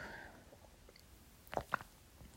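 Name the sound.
sipping coffee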